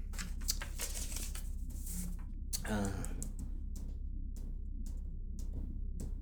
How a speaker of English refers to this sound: All right. Let's get this sheet of paper.